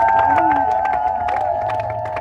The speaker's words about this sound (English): I want you to clap for Jesus. I believe this. I said clap for Jesus.